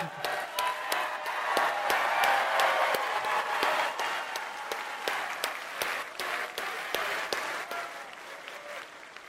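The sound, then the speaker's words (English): A crowd bursts into sustained applause for actor Nick Searcy, dense rapid clapping that holds steady for several seconds before thinning slightly toward the end, with a few sharp individual claps standing out. “Nick Searcy is also in the movie, and if you clap for him, I'll walk off the stage.”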